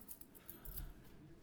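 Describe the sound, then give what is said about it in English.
A quiet jingle of keys: a handful of light metallic clinks scattered irregularly over a second and a half as the keyring is handled and unclipped from a belt, with no talking. “I just realized I left my keys on my belt.”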